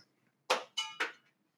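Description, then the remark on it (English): A pen thrown across the room clatters down in three quick, sharp hard-surface impacts with short bright ringing tails, each slightly quieter than the first. No one speaks. “our new sales and marketing coordinator, to the podcast, when chiming in by throwing a pen across the room.”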